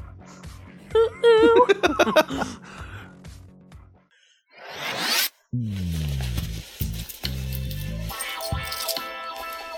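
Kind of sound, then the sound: household object, zipper being pulled down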